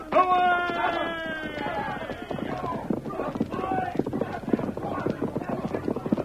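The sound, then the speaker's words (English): Several horses gallop off, hooves clip-clopping in a rapid, steady clatter that stays loud throughout, opening with a brief high-pitched cry over the first hoofbeats. “Get on your horse, Tonto.”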